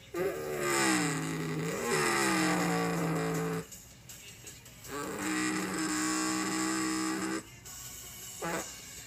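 Loud race car engines roar in two long bursts during the Hotel California 400 race of the N R R C A A Cup Series, their pitch climbing and dropping as they rev and pass, followed by a brief third snarl. No one speaks.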